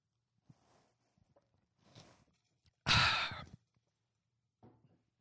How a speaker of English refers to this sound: I don't know if you could hear that water going down. Ice cold, the ice cubes clinking against the stainless steel Saga FC Riders Cup.